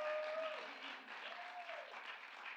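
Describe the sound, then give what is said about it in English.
A church audience applauds God steadily, a dense wash of many hands clapping at an even level, with a few faint voices and tonal calls drifting over the clapping. “So He said, go ahead and applaud Him.”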